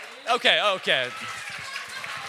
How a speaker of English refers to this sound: Okay, so, wow, I was not expecting an applause. I love you guys, that helped me.